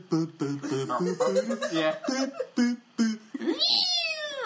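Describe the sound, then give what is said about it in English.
Voices talk for a few seconds, then a single drawn-out cat meow rises and trails off at the end, fairly loud. “Like cat sounds in the background.”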